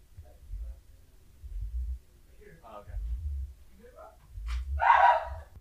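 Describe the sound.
A dog gives a single sharp bark near the end, over a low rumbling background with faint murmuring voices.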